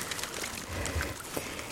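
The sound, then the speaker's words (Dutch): Boots wading about 10 metres through water against the waves, the water about 4 centimetres below the boot rim: a continuous sloshing and swishing with soft low surges as each step pushes through, steady and moderately loud, with no voices. “Ik moet nu nog ongeveer 10 meter door het water”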